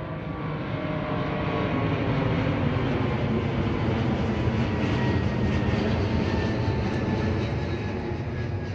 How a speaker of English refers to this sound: This I was not prepared for. And please note, that's not an airplane sound effect. That's a real recording made just with my iPhone standing in my backyard.